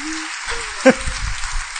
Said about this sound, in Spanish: ¿Algunos fracasados le quieren dar un aplauso al Señor en este día?